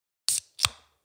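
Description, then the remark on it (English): A can of Pirate Life South Coast Pale Ale beer from Port Adelaide, South Australia, is cracked open: a short, sharp hiss of escaping gas, then a quick metallic pop with a brief fizzy tail, and no one talking. “It had a good fizz crack.”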